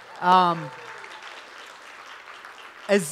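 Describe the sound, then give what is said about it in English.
A church crowd gives a round of applause welcoming a new pastor and his family onto the stage, a steady wash of many hands clapping, with a loud whooping cheer at the start and another brief shout just before it ends. “You guys can give them a round of applause.”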